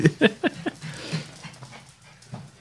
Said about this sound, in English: My dogs knew I was home, and they're all pissed off.